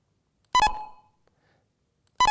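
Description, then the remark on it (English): Two short electronic beeps, each a quick two-tone blip, separated by a silent gap of about a second and a half, with a faint decaying tail after the first, offset by the real-world network round-trip time from Dallas to Milan. “You can actually hear, you can distinguish these two beeps, which is ultimately why you can't keep in time.”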